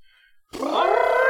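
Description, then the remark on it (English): After a brief near-silence, about four or five people burst into a loud, brassy trumpeting imitation of an elephant to vote in favor of the Pokémon Phanpy, a sustained, rising, roaring call that holds strong to the end. “All those in favor of Phanpy, make your best elephant noise.”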